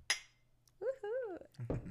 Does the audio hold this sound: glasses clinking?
yes